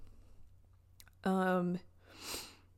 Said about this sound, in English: Sorry if you hear that big gulp and like, sorry.